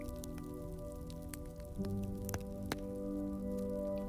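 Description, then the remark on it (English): A crackling fire snaps and pops irregularly, sharp little clicks scattered over a low, steady hum, with a few louder pops standing out near the end. “Hear now the crackling of the fire.”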